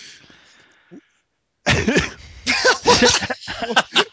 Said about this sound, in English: Sorry, I just had a nice coughing fit.